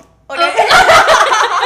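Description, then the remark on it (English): A voice imitates a fart with a loud, wet sputtering raspberry lasting about a second, starting abruptly after a brief silence. “And I remember him being like, did you just fart?”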